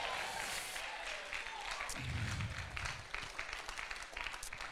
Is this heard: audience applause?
yes